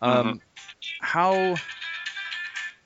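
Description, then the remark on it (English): A mobile phone ringtone plays a short musical tune with bright, voice-like melodic tones, clear, lasting a few seconds with brief pauses between phrases. “Somebody had a phone ringtone there.”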